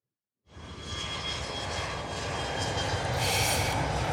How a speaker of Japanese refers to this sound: ああ、空港です。今から飛行機に乗ってどこかに行くんですね。